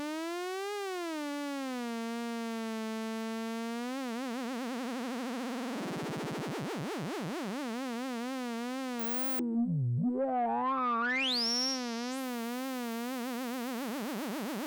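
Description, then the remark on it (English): A sustained synth tone, the so-called TikTok vibrato sound, wobbles in pitch with steady vibrato, alternating between two pitches from a square wave LFO, then a bright high sweep rises briefly. No voices. “This is the TikTok vibrato sound, by the way. Square wave LFO.”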